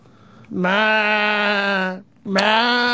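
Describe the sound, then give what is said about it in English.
A person's voice imitates a sheep, holding a long, steady bleat of about a second and a half, then pausing briefly before starting a second bleat at the same pitch. “And a sheep? Sheep?”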